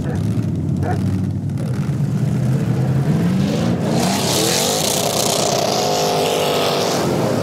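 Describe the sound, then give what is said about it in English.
Loud 3,000-pound junker race cars rev and accelerate from the green flag on an icy circle track, their whining pitch climbing steadily as the cars pull away, with a roaring wash of engine noise building in the second half and a voice talking over it. “It might seem counterintuitive when we're talking about 3,000-pound junkers hurtling around an icy circle”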